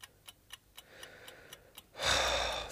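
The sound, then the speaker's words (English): A clock ticks in a steady, evenly spaced rhythm, crisp, about four ticks a second, before a sudden loud breathy rush of noise swells up and covers the last moments. “Have you noticed how loudly clocks seem to tick when there's someone dead in the house?”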